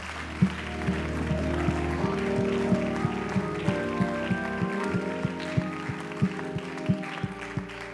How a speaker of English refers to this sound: Let's clap our hands and thank Him for His word.